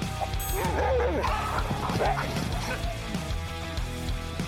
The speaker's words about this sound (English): Huskies are the strong, silent type, but boy, can they howl. A husky's howl can be heard up to 10 miles away.